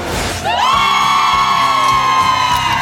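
A loud studio crowd cheers and whoops on a Friday morning, with a burst of noisy shouting giving way to a long, sustained high-pitched cheer that holds steady over the din.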